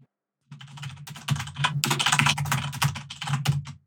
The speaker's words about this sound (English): I'm hearing furious typing as Mike hunts down an intro.